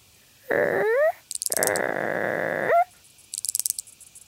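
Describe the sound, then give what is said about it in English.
A creaking branch cicada calls in two drawn-out, creaky bursts with rising squeaky tones, like a tree limb groaning, followed by a few brief high clicks. No one speaks. “Its name is the creaking branch cicada, because that's what it sounds like, a creaky tree branch.”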